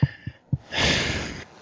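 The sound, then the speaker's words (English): Heavy breathing from a man who has just run down the stairs: a long, rough, noisy exhale follows a few soft low thumps as he catches his breath. No talking. “He's just breathing really hard because he just ran down the stairs.”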